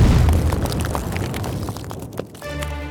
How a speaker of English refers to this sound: The explosion ripped through the House of Lords like a shockwave.